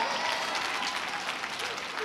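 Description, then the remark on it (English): A crowd applauds steadily, giving the Lord a hand clap, many hands clapping at once in a dense, continuous wash of sound that holds at an even level for a couple of seconds. “Go ahead and give the Lord another great hand clap.”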